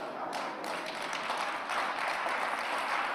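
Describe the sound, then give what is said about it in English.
A crowd applauds steadily for a few seconds, a dense wash of many hands clapping at once that swells slightly toward the end, with no one speaking over it; an audience clapping in agreement with a pastor's sermon. “If you agree with me, clap.”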